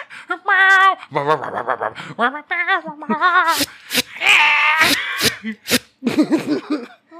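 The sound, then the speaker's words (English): A person's voice mimics a cat's chattering at a bird, with quick high-pitched chirps and trills mixed with sharp clicking sounds, fairly loud, lasting several seconds with no words. “You know when a cat's like looking out a window at a bird and their like bottom jaw just twitches and they do these little chirps, they're like little click noises.”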